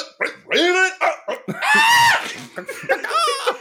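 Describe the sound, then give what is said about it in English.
A person croaks like a raven in three strained, raspy calls, the middle one long and drawn out, with a gargling, throaty quality and short breaks between them. “That's a raven with some sort of like venereal disease.”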